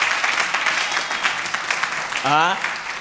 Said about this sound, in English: I told you we're going to clap. You people, you don't know how to receive a prophecy.